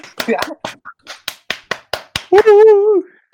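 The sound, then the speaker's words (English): A lone person claps about ten times in a quick, steady rhythm, loud, then a short voiced whoop follows as the clapping stops. “Yeah, still only one person clap for you.”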